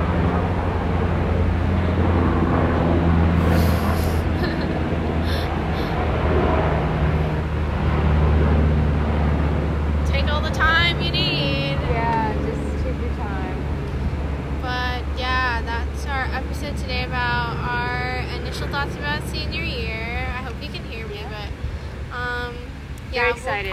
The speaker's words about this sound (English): Maybe we should let this helicopter pass. Oh my gosh, it's so loud.